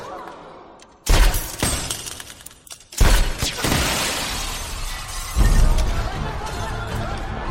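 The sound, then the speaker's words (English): Three loud, sharp bullet strikes hit bulletproof glass at spaced intervals, each a cracking shatter-like impact followed by a lingering crackling rattle, without any talking. “I think if you got bulletproof glass in front of you, you're gonna wince in it.”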